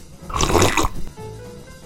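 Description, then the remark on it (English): A brief slurping sip of Winslow Tea made with almond milk, lasting about half a second, a wet, airy burst of noise, followed by faint low hum and quiet background. “Before I talk about pizza, I'm going to take another sip.”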